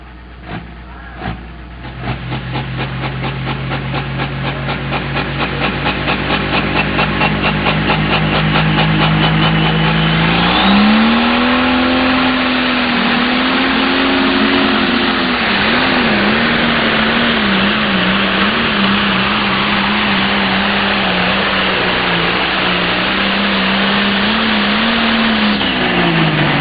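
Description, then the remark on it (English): A John Deere 4620 tractor, run by Kyle Pedley out of Ocheden, Iowa, at a tractor pull, idles with a low steady drone, then roars up loudly and holds a strained, wavering pitch as it labors under load for a long continuous pull, a pass of 366.8. “Here comes Kyle Pedley, the wide loose deer out of Ocheden, Iowa. 4620, John Deere.”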